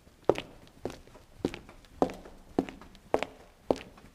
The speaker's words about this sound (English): walks into the building with footsteps.